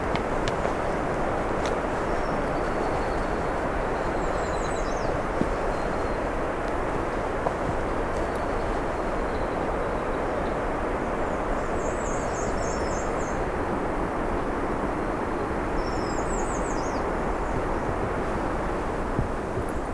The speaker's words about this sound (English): Another black and white warbler.